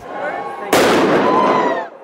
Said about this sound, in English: However, the ban did not eliminate the annual and largely unregulated Halloween fireworks display over Vancouver